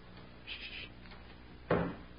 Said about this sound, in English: Is that the front door? Yes. And she's here.